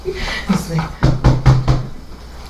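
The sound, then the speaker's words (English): Four loud, heavy footsteps land in a quick, steady rhythm, like someone stomping up to a door, preceded by a brief murmur of voice. “I would just kind of back up a little, wait a few seconds, and then very loudly walk up to the door.”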